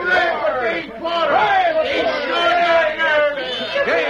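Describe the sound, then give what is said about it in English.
A crowd of townspeople in the town of Wayne cheers and shouts together, many overlapping voices rising and falling in a loud, continuous wave of excited hollering that lasts throughout. “Oh, they're cheering for you, Dave.”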